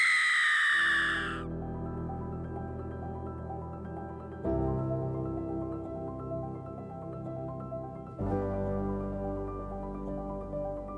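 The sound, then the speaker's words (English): A woman lets out a single loud, high-pitched scream lasting about a second, immediately followed by a low, ominous musical drone that swells and shifts twice. “And with that, Betty Lou screamed.”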